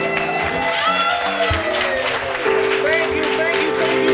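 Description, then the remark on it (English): An audience applauds steadily for several seconds as the host of a comedy show is introduced, a dense wash of clapping and cheering mixed with tonal music and some voices rising through it. “and I know that applause, you were saving it, and that was for everybody, and I appreciate it.”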